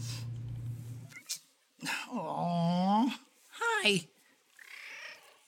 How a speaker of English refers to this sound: Well, how do my cats know? I haven't even done any of my standard, like, we're leaving kind of things, and now he's over here and he's meowing at me already.